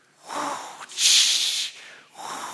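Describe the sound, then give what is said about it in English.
A crowd, one side of an audience, voices ocean waves with breathy whooshing, three surging swells with the middle one loudest and hissiest, rising and falling like waves washing in. “The waves, you're going to do this. You can go, whoosh, whoosh.”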